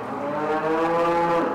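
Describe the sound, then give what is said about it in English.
A dairy cow lets out one long, drawn-out moo, steady and fairly loud, at Blue Spruce Dairy Farm in Bridport, Vermont, home to 2,000 cows huddled in long pens, at 5 o'clock on a cold morning, with no voices present. “At 5 o'clock on a cold Vermont morning, even the cows don't seem too happy to be awake.”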